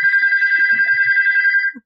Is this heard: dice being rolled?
no